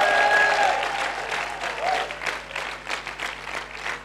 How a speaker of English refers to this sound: Put your Bibles down. Give the Lord a hand clap offering. Somebody celebrate God in this house.